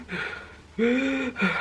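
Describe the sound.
A person imitates labored, choked breathing: strained, raspy gasps with a voiced, wheezy catch, a short one, then a longer drawn-out rasping inhale, then another brief gasp.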